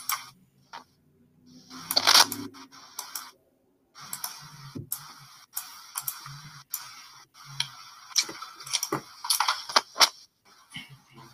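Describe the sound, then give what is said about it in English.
Rapid, uneven clacking of mechanical keyboard keys, a dense burst of crisp clicks early on followed by steady bursts of typing with brief pauses, fairly quiet with no voices. “I can hear your mechanical keyboard.”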